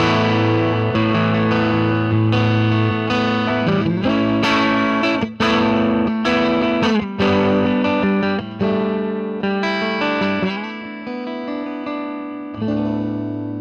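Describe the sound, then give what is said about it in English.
A Fender Stratocaster electric guitar played loud through an amplifier with the attenuator fully off and a Boing pedal adding light reverb, strummed chords and sustained notes ringing with a slightly driven tone, continuous with no talking. “All I've got going through it is just a Fender Strat and a Boing pedal, which is a little bit of reverb.”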